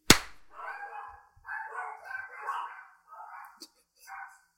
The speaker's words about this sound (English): And my dogs barked in the background when I did that. That's my clap sync, is them barking.